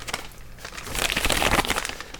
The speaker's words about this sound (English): Can you ruffle the paper a little closer to the mic, please?